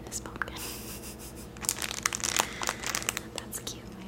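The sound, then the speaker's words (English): Crinkling of the plastic packaging of a decorative napkin printed with three pumpkins and a cat: irregular bursts of sharp, crackly rustling that start sparse and soft, then grow denser and louder through the second half. “Also has lovely crinkles.”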